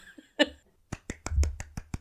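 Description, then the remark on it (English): Soft, sparse applause: roughly seven quiet, crisp hand claps at a steady, unhurried pace, preceded by a brief higher-pitched vocal sound, with no talking. “That was a very quiet applause.”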